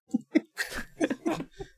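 Wet slurping sounds as someone sips a drink, a couple of short mouth clicks followed by a longer noisy slurp and a few smaller gulps, fairly quiet and with no talking.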